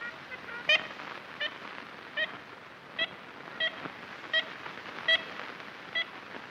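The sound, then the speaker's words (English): Ivory-billed woodpecker calls from a 1930s recording made in the Singer Tract, an 80,000-acre hardwood forest in north-central Louisiana: about eight short, nasal, toy-trumpet-like toots at a steady, unhurried pace, over a constant hiss of old-recording noise. “Ivory-billed woodpecker, Cornell catalog, cut one.”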